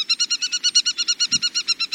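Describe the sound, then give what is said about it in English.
An aplomado falcon, alighting to survey the landscape, calls in a rapid, steady series of sharp, harsh notes, about eight per second, loud, with no other sounds around it. “This time, the sparrows escape, and their pursuer, an aplomado falcon, alights to survey the landscape.”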